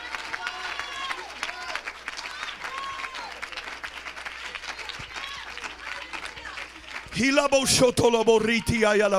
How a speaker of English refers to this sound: Come on, let's clap our hands and give God praise.